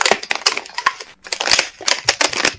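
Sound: crunching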